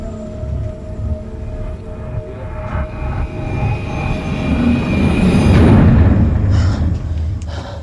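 A sweeping transition whoosh layered over a low, rumbling airplane engine drone with faint steady tones, swelling louder toward the end before easing slightly, no voices.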